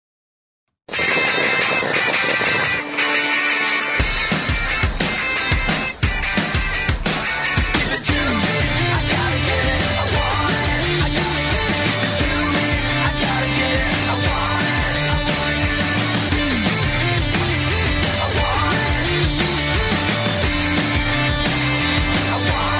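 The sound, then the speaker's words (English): A loud advertising jingle for Sharpie permanent marker pens plays without any talking: busy, driving music with a steady beat and shifting melodic lines that starts abruptly and keeps going at full level. “In fact, look, you've got to go, but I'll just quickly play this jingle out because it's not going to take long.”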